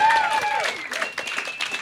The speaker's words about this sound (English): Big round of applause for all your roasters tonight.